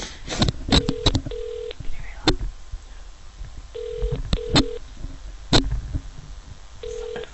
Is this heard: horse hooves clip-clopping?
no